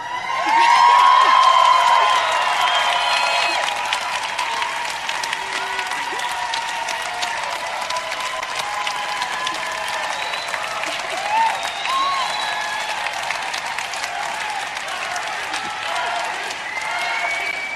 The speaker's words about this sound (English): So you heard cheers and chants for Bernie and what appeared to be boos for the idea of meeting the new chairman of the Democratic Party